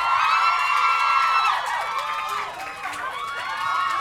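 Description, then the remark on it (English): A large crowd cheers and whoops continuously to welcome Shailene Woodley, Theo James and Neil Berger, a dense wash of high-pitched shrieks and yells that stays loud throughout, dipping slightly midway before swelling again. “Keep cheering and whooping and so on because it makes them feel welcome.”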